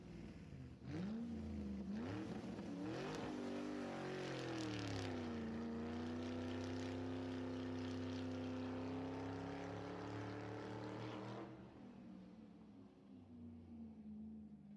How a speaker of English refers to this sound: jumped in his car and headed straight for the depot.